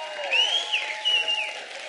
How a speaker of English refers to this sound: To be honest with you, I don't know why you're clapping about that. I don't think you should encourage that.